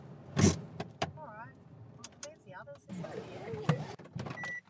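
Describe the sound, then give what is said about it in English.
About 25 people climb out of 7 parked cars that arrived together in convoy at a protest blockade camp in central Queensland, Australia: car doors thud and clunk at irregular intervals, a short mechanical whir sounds between them, and voices chatter throughout. “25 people pile out of the 7 cars that convoyed here together.”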